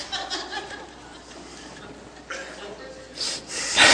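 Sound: imitated snoring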